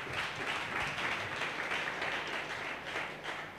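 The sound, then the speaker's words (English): A church audience claps steadily for Jesus during a sermon, many hands blending into a dense, continuous wash of applause that stays fairly even in loudness for a few seconds, with no voices standing out. “Church, clap your hands for Jesus.”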